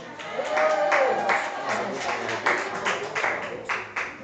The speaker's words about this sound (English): Y'all put y'all hands together for Miss Kayla Joy.